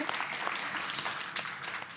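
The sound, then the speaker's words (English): An audience claps steadily throughout, a dense crackle of many hands blending into a continuous wash of applause, moderately loud, with no voices rising above it; applauding a couple's almost 19 years of marriage. “Yeah, clap for that.”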